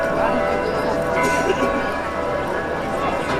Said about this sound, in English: Tens of thousands of people in Copenhagen braved the 3 degrees Celsius temperature to catch a glimpse of the new monarchs as church bells rang out across the capital.